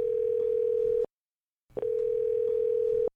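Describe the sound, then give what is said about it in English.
A steady electronic phone tone sounds twice, each burst about a second or more long with a short silent gap between, loud, like a line tone as a call with a guest joining by phone goes through. “I think we have a guest by phone.”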